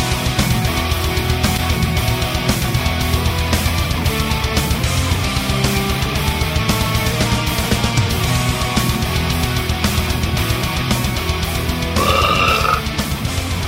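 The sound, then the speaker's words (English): A long, loud, rumbling burp drags on for many seconds, deep and gravelly with a raspy, fluttering texture, unbroken, with no talking around it. “We've actually had a lot of good burps here live on the air, and we got to start cataloging these things.”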